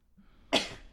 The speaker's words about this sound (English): Sorry, I sneezed. No shit. I think that we all heard that because I can hear it in here.